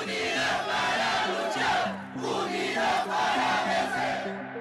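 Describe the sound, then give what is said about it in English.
A large crowd of indigenous protesters in Peru chants loudly in unison, their voices rising and falling in rhythmic bursts with a brief dip in the middle before the chanting surges again. “So when the government doesn't protect its people, the people protest.”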